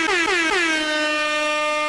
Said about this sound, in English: Just in case in point, and I think I can do it one last air horn. Shout out to the Georgia State students.